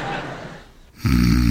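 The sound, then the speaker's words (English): A man snores in his sleep: a soft, raspy inhale trails off into a brief lull, then a loud, buzzing, low-pitched snore erupts and holds steady to the end. “Stop what? That snoring.”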